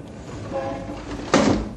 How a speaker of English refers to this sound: Shut that window. Here we are in a skyscraper, 40 stories above the street, and yet that traffic noise would drive you crazy. Shut the window, I say.